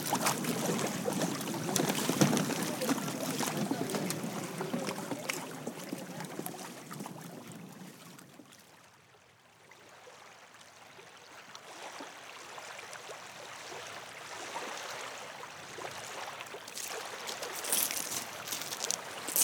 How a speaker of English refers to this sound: The engine is dwindling, we're just about to dock.